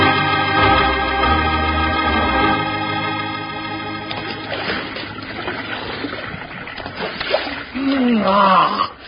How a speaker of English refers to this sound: Wee, you know, Bill, there just ain't nothing to beat a nice long swig of fresh water out of a cool mountain stream. Better than pink lemonade, yes, sirree.